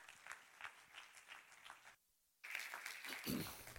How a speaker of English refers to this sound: I'm excited tonight to hear from our pastor. Can we give a hand clap of praise as our pastor takes the pulpit?